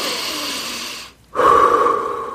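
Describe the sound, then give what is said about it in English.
A slow, deep calming breath drawn in with a soft airy hiss, a brief pause, then a fuller, slightly louder exhale. The breathing is unhurried, with no talking. “If you do any affirmations or practice new thoughts you want to adopt, you can say those sentences after each breathing out.”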